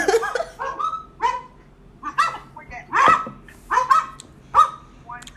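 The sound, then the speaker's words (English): About five huge dogs barking in a steady run of loud, deep barks, about a dozen in quick succession, some overlapping as if more than one dog is joining in. “Those dogs are big, too.”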